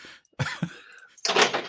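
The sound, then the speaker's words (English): A new door is unlocked and opened: two quick, solid clunks from the lock, then a louder burst of rushing, scraping noise as the door swings open. No one speaks. “We've locked up for the night. I don't know why he's here. Yeah, go on, fuck off. I can't open my new door.”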